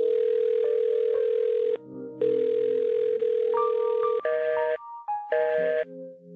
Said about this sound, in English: So, you know, I think I hear something. Do you hear that? Whoa. Do you hear that? Is there a phone ringing?